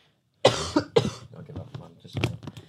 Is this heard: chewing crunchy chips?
no